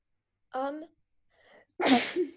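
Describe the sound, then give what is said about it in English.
A single loud sneeze: a brief voiced 'ah' intake and a short breathy pause, then a sharp, explosive burst of breath that trails off quickly. “Bless you.”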